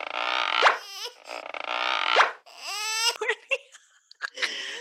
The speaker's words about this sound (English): So we had that squeak sound effect for her. I thought that was pretty funny.